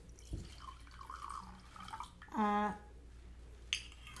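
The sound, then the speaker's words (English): Underwood Rosé wine, Oregon grown, is poured into a glass in one short burst, its gurgling pitch rising as the glass fills, framed by a few faint drips and small clinks. “I'm going to pour more wine.”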